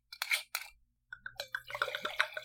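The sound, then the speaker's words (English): Two sharp splashy bursts, then Italian wine from a screw-cap bottle glugs vigorously into a glass, a quick run of gurgles whose pitch climbs as the glass fills, fairly loud and with no talking. “I did splash. That was such an intense pour.”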